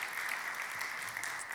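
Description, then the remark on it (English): A crowd claps steadily for a team of volunteers one morning, a dense, even wash of many hands applauding at once, sustained and fairly loud throughout with no talking over it. “And so can you just clap for our dream team this morning?”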